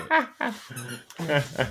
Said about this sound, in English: The squeaky toy. The squeaky toy sounds fantastic. I love that in the background. That's gonna have to go.